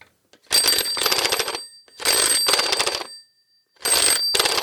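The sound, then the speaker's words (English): A telephone ringtone, triggered by pushing a blue phone button, rings in three loud bursts, each a pair of rapid trilling rings separated by short pauses, clear with no talking. “Do you want to push the phone button?”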